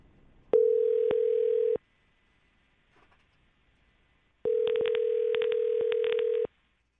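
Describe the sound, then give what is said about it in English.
A telephone line tone from a call placed during a radio show segment called Waiting by the Phone rings out in two steady electronic bursts, a short one then a longer one, separated by a few seconds of near silence, clear with no talking. “Let's call Lori. Find out.”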